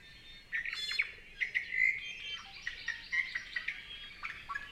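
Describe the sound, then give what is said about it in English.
A Kauai o'o, an extinct native Hawaiian bird, sings a steady run of clear, flute-like whistles and quick chirps, a few seconds of birdsong with no voices and only faint background hiss. “Kauai o'o fed primarily on nectar of various native flowers, and the causes for their extinction were similar to those for many other native Hawaiian birds, and include habitat destruction and introduced predators and disease.”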